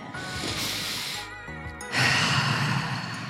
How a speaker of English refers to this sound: So it's a breath all in through the mouth. Fill the belly, fill the chest, and then let it out through the mouth.